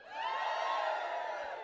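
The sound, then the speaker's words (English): An audience cheers loudly and steadily for under two seconds to show they like Halloween, a dense wash of many voices whooping and yelling together at an even level, with no single speaker standing out. “Give us a cheer if you like Halloween.”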